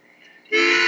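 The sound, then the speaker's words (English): A harmonica sounds a reedy chord, starting soft and then jumping abruptly to a loud, bright, sustained blast for the second half of the short clip. “Do you have harmonicas on your planet?”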